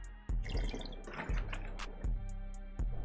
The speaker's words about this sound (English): Let me swig some water. Hold up.